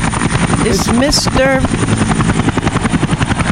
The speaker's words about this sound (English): Flying high in the sky in the Renegade Nation chopper as we fly over you, laughing at all of you. Is it a bird? Is it a plane?